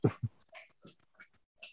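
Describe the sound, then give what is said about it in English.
A female dog laps water, a quick series of wet slurping splashes at a steady, slightly uneven rhythm, with no one talking. “You hear her drinking?”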